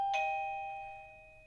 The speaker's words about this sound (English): Is that someone's doorbell? It is my doorbell, but don't worry, it's being dealt with.